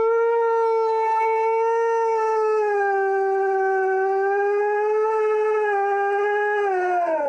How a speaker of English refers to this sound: turns out this dog, it's a husky named Zeus, loves the bathtub so much that he starts howling at his owners to pretty much let him stay in the tub. This is what it sounded like.